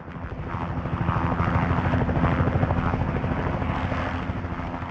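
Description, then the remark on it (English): A helicopter flies overhead, its rotor blades thumping in a rapid, steady beat over a loud engine whine that swells and then slowly eases off. “helicopter pilots all around the world who are enthusiastic like I am about the most wonderful magic carpet in the world”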